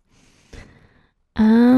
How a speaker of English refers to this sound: You're just like breathing into the microphone.